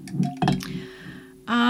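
Champagne pours into a glass after a few light clinks, a steady ringing tone running under the flow, then a louder, harmonic-rich sound takes over at the end.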